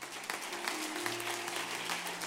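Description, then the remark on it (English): A church audience applauds steadily to honor its church leaders, a dense wash of hand claps sustained throughout with a faint low hum of voices beneath. “Could you give them a hand clap?”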